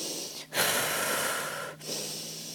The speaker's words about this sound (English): Going through a rapid breathing practice.